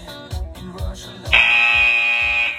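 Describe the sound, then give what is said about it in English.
A timer buzzer sounds once at the end of a timed run interval in a workout, a loud steady electronic tone holding for over a second above upbeat background music with a thumping beat. “Ready, and for that buzzer.”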